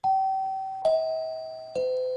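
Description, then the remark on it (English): A doorbell-style chime rings three clear, descending notes in steady succession, each struck tone ringing on and overlapping the next. It is fairly loud, with no voices. “And there it is. That is, of course, I remember that chime.”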